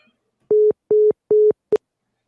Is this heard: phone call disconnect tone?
yes